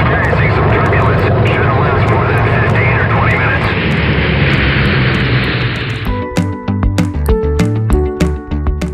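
A loud, steady airplane engine roars for about six seconds, then cuts off and gives way to upbeat music with punchy beats.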